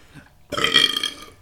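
A single loud, drawn-out burp erupts after a brief quiet lull, lasting about a second with a rough, gurgling texture before cutting off.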